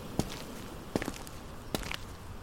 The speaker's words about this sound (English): I walk across the great ballroom, feeling dust and grit crunch and scrape beneath my feet.